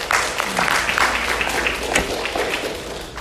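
A crowd applauds steadily, many hands clapping in a dense, sustained wash of sound that holds fairly loud and even throughout, with no voices standing out.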